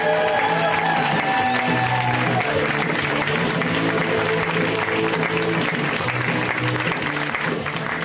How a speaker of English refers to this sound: So let's give an extra happy birthday round of applause,